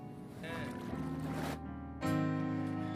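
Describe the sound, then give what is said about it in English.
A rushing, sloshing burst of water as a woman is dunked and lifted during a baptism by immersion, followed by a group beginning to sing loudly, with a steady, sustained chorus. “In obedience to the great head of the church, and upon the profession of your faith, my sister, I now baptize you in the name of the Father, and of the Son, and of the Holy Ghost.”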